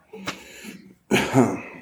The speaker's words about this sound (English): Get a little water. And if I start coughing, I don't think I'm really sick, but there's something been going on there for a week or so.